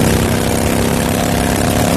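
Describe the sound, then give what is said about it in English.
A motorcycle engine runs loud with a steady, rumbling drone that holds an even level for two seconds, drowning out a Progressive insurance commercial playing on the motorcycle, with no one speaking over it. “And this is how that same commercial sounds on your motorcycle.”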